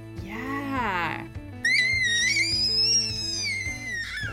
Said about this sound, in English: That is the most like joyous trilling baby sound. Yeah, he's making a big like watermelon grin as he does it.